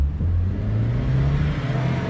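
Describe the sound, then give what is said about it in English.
A Porsche sports car engine revs loudly, a deep steady drone whose pitch climbs slightly before leveling off, continuous for the whole moment with no voices. “We're so low to the ground, it feels like the car is twerking. She's a Porsche.”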